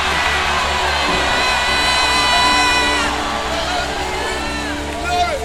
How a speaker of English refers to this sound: See, if of the truth you can eat, if of the truth your hands are still functioning, if of the truth your legs are working, come and jump on your feet and shout hallelujah.